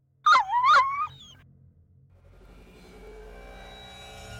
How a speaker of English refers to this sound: But as I walked closer to the ball, I heard the pitiful yowls and yelps of a dog.